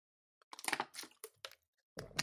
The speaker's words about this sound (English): My water bottle's loud. Because it's plastic, and plastic can be loud when you crinkle it.